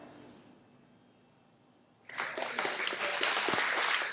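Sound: applause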